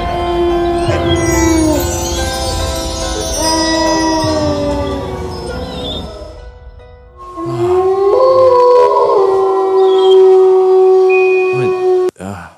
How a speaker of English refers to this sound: You have coyotes around here? John? You know, here at the Jambalaya Therapy School, we keep a couple of wildlife around. You know, we got a couple of wolves.